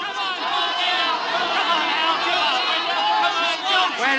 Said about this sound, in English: Then came a night, long after, a nightclub in Hollywood, the crowd yelling.